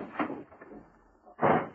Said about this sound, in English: The door burst open and Mike stood facing him.